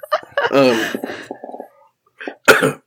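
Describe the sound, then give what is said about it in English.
A man lets out a single sharp, loud sneeze near the end, following a stretch of strained voiced sounds and a short pause. “I do have a sneeze coming. I feel it.”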